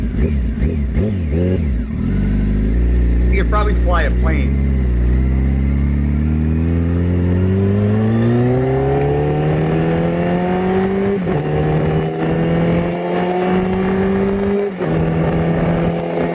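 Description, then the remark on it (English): A motorcycle engine in a played video roars, revving and then accelerating steadily with a rising pitch that climbs for several seconds, loud and continuous, with a brief voice near the start. “And then here he's on his motorcycle.”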